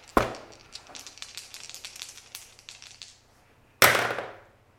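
dice being rolled

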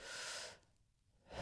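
human body sound, yawn

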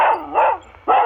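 animal, dog barking

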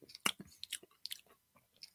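food or drink, sipping a drink

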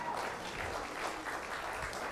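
crowd, audience applause

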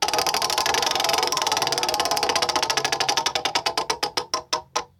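sound effect, prize wheel spinning

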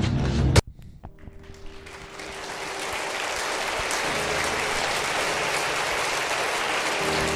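crowd, round of applause

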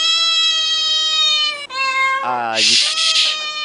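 animal, cat meowing

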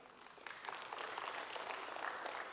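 crowd, audience applauding

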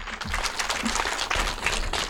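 crowd, audience applause

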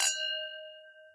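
household object, wine glasses clinking

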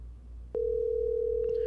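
signal or alarm, phone call ringing tone

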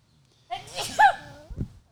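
human body sound, sneeze

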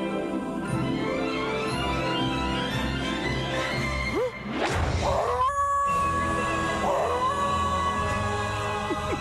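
animal, dog crying and howling

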